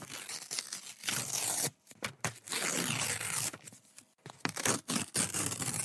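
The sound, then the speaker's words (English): Paper being ripped open in several loud bursts, with rustling and crinkling between the tears and a few brief pauses, as a wrapped parcel is torn apart. No one speaks. “Paper? Sticks of wood? Styrofoam?”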